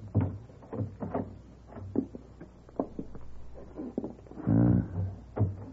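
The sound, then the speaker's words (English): A service entrance door off a back hall is eased open quietly: soft clicks and shuffling thumps, then a brief low creak of hinges near the end, with no voices. “I think this is the door, Monsieur Paladin.”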